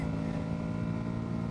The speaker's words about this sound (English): That is just stock. Stock. This is stock exhaust? Stock. And it's not the exhaust you're hearing. It's the induction.